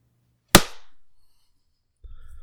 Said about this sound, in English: All right. I heard some good clapping. I clapped my heart out.